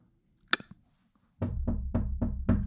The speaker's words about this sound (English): And they leave. They drive off. And not but 5 minutes later, you hear a knock at your door.